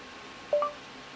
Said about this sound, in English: What I'm going to do, I'm going to hold in the voice assistant button on the side. It's going to say, I'll listen after a beep, and then I'll just say something.